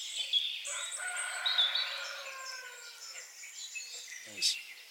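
A rooster crows beneath a dense, busy chorus of songbirds, including wrens and blackcaps, with trills and high chirps overlapping continuously throughout, near the slopes of the Blorenge Hill.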